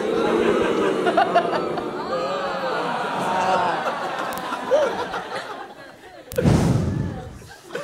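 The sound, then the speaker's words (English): A stand-up comedy crowd oohs and ahhs at a heckler's insult, many overlapping voices rising and falling together with scattered laughter, and a sharp loud burst of noise near the end. “The crowd oohs and ahs.”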